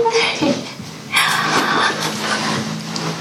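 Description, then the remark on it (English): A big German Shepherd sniffs at the bath water in a bathtub, with quick, breathy snuffling bursts and snorts running for a few seconds over a low steady background hum. “you smelling the bath water?”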